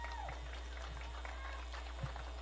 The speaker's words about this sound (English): Alexis Rocha, Giovanni Barraza. Round of applause for them right now.